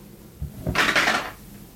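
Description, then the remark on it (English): Two quick, soft knocks of percentile (D100) dice dropped one at a time onto a table during a tabletop role-playing game roll, followed by a brighter half-second of hard plastic clattering and rolling before it settles. No one speaks. “I dropped the dice one at a time.”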